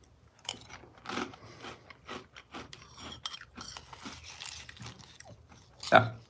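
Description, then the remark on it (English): Crunchy chewing of dry Cinefuego Toast Crunch cereal, a steady run of crisp bites and grinding crunches, with one louder crunch near the end. “Let's try it. This is Cinefuego Toast Crunch cereal.”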